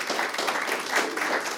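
An audience claps steadily, a dense, even wash of many hands applauding at a fairly constant loudness for under two seconds.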